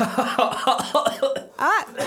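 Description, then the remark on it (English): A run of short, voiced coughs comes in quick bursts, ending in a drawn-out throaty cough with a rising and falling pitch, loud. “I had to cough to distract myself from the truth.”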